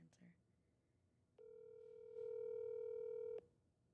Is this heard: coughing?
no